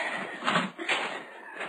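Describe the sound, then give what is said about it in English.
Huge, heavy wooden doors at the entrance of a gray building being pushed open with effort, with two short scraping, creaking surges against a steady background hiss. No voices. “The huge wooden doors were slightly ajar at the entrance, and with an effort, Mark pushed them open”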